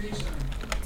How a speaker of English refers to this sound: It's actually a membrane that sounds like a mechanical keyboard because I'm too poor for an actual mechanical keyboard.